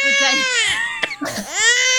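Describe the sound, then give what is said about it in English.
A 10-week-old infant cries loudly in two high-pitched, wavering wails, broken by a brief catch of breath in the middle. No one speaks over it. “You know, doing a podcast with a 10-week-old.”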